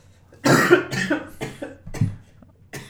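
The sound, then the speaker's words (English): A man coughs in a harsh fit: a heavy first burst followed by several shorter coughs at uneven intervals over a few seconds, with no talking. “Oh, now who's coughing, eh?”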